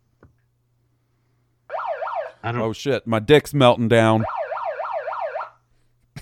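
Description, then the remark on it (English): A vehicle's reversing warning tone warbles rapidly up and down in pitch, cutting out while a man speaks over it, then returning for about a second before stopping. “That's what it sounds like when you back up.”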